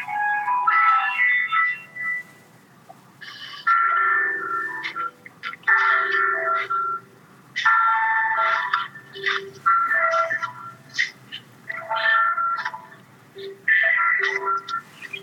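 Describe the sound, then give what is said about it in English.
A campus bell rings outdoors, playing a steady melodic chime in repeated phrases of bright tones, moderately loud and continuing throughout with no one talking over it. “No, I'm outside. There's a bell ringing.”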